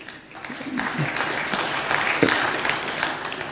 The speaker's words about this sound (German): Erfrischend wenig Applaus.